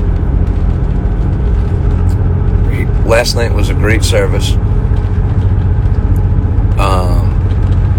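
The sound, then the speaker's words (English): Steady, loud low-pitched rumble of a car driving at speed on a highway fills the whole recording, while a voice speaks briefly over it partway through and again near the end. “So I'm going to move quick because I don't know how long I'll have signal for on the highway.”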